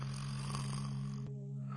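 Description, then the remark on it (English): A single loud, rasping snore, drawn out, with a low buzzing drone that cuts off abruptly near the end, leaving a faint hum; a person snoring while pretending to sleep. “Do you notice that when a person is pretending to sleep, they always snore, but when they're actually sleeping, it doesn't necessarily mean they're going to snore?”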